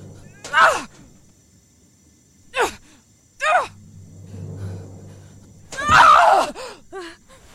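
A video game character lets out several short, strained screams and gasps in separate bursts, with a low rumbling hum between them and a longer, louder cry near the end.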